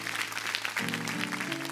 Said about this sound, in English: Clap your hands and give him glory.